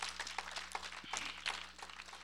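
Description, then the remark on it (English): A church audience claps their hands in praise to the Lord, a dense, steady patter of many hands with no speech, fairly soft, over a low constant hum. “Go ahead, give the Lord a hand clap of praise.”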